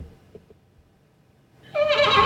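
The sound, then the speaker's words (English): A horse-like whinny imitation kicks in after a quiet start, a loud, wavering, bubbly neigh made by a person blowing into beer, lasting under a second. “So could you know that horse sound that they can make, like, yeah, can you do that?”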